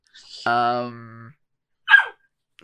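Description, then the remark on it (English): A puppy lets out one short, sharp yip, coming right after a drawn-out low voiced sound, with otherwise quiet surroundings. “I got to deal with this puppy.”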